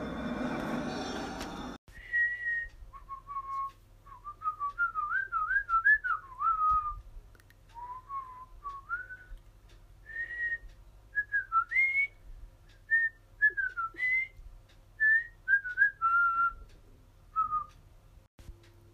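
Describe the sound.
A person whistles a melodic tune alone as an introduction, clear, with short phrases rising and falling over a low steady hum, after a brief burst of noise at the start.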